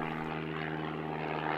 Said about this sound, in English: And then, a dot to the north grew bigger and bigger and bigger as the biplane came into view.